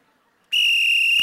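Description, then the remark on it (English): A sharp, shrill referee whistle blast, blown to start the fourth quarter, cuts in abruptly after a brief silence and holds steady and loud as a single sustained blow. “We'll begin the fourth quarter with Pastor Zach on my whistle”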